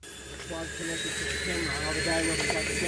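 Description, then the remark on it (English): A small plane's engine drones steadily before takeoff at Townsville Airport, Queensland, a constant humming roar with a high whine layered on top, while muffled voices talk faintly underneath; the plane is used by James Cook University researchers for a dugong survey. “It involves one small plane and a few high-quality cameras.”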